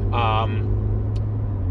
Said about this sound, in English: This is not a third time recording, so I'm having a fucking technical electrical interference issue with my fucking car.